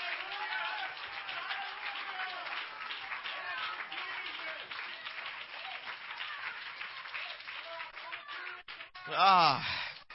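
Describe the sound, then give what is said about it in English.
An audience claps hands to give God praise in a dense, steady patter while voices call out and sing over it, ending with a loud, rising vocal exclamation. “Come on, clap your hands and give God some praise in this house.”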